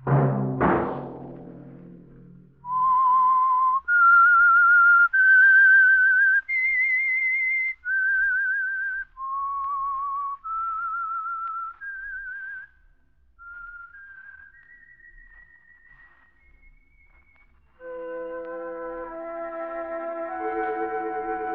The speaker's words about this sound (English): That whistle be your signal for the Signal Oil program, The Whistler.